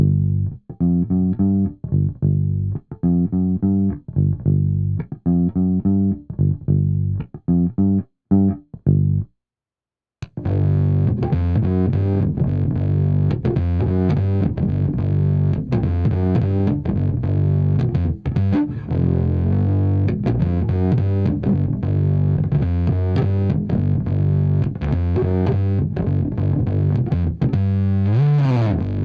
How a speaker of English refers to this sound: I think we should check this out with a bass. I'm running through a vintage Ampeg V48 bass head, playing a P bass with flat wounds.